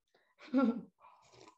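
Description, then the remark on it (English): A quiet sip of coffee: a brief slurping gulp followed by a soft breathy swallow, with no one speaking. “little sip of coffee here and there, because you know.”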